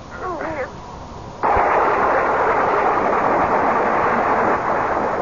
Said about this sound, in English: I was literally galvanized awake by a bolt of lightning which must have hit the tree. It was dark, and the thunder continued to grumble menacingly, so with what wits were left to me, I fled the dream and the storm and ran pell-mell for home.